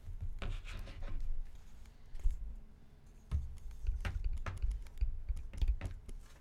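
Someone quickly writes answers by hand during a CTG Jeopardy quiz game: irregular scratching strokes and sharp little taps of a pen on a hard surface, steady for several seconds with no talking.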